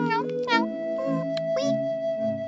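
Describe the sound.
A person's voice mimics a cat, giving several short, whiny meows in quick succession, clear, with a faint steady tone humming underneath.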